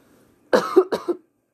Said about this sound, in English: Yeah, also, sorry for coughing. I feel like, because it's like so cold in Manitoba right now, so I am literally just starting to feel it, especially because I have really bad sinuses in general already and bad congestion.